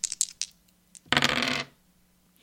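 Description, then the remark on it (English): Dice are rolled across a hard table for a charisma check in a game, landing on 8: a few quick separate clicks, then a short dense burst of rattling tumbles that stops abruptly, fairly loud, with no voices. “Okay, here we go. Dice noise. Dice noise.”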